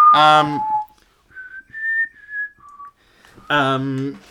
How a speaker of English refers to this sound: You can whistle now, properly. Yes, I can whistle again. Yeah. Yes, it took months, but I can whistle again. Yeah, excellent. No, I can't bloody whistle.